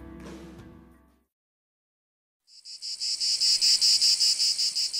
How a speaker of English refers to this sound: Well, in just a few months, parts of Iowa will be abuzz with not one, but two special cicada broods. It's something that hasn't happened for over 200 years.